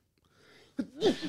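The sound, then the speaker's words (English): A single sneeze: a quick sharp intake followed by a loud, breathy burst that rises in pitch and cuts off abruptly, with no talking around it. “God bless you.”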